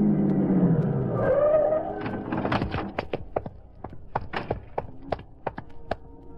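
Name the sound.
car driving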